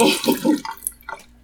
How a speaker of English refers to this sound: I have to pour my developer out.